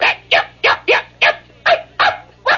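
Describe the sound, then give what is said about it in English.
A small dog sitting out back yaps in a fast, steady string of eight sharp, high-pitched barks, evenly spaced about three per second, loud, with no other sounds. “He's just sitting on the back going, yap, yap, yap, yap, yap, yap, yap, yap, yap, yap, yap, steadily.”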